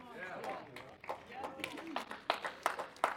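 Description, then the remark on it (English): Sparse, scattered clapping from an audience, a handful of uneven claps that grow a little sharper toward the end, with voices talking and murmuring underneath. “It's a very, very, very fractured clapping because some of you are not happy with what I just said.”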